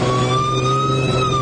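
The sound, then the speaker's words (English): A police car siren wails loud, a steady sustained tone sliding slowly in pitch with engine rumble underneath, filling the whole moment without any talking; the police car is behind a vehicle, chasing it and signalling it to pull over. “There's a cop car behind me.”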